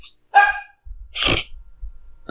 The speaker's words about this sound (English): One, I need to stop the dog from barking first. Hey!